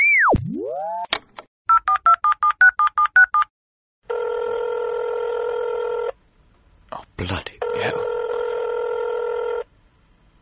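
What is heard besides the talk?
telephone ringing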